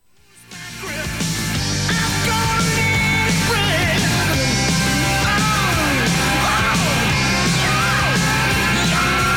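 A rock singer lets out long, high, wailing screams over a loud, full band with pounding drums and distorted guitars, the voice sliding and bending in pitch throughout.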